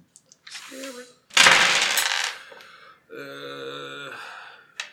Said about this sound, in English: but then I've got to roll your 3 stress dice